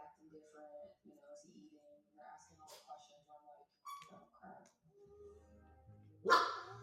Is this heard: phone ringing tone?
no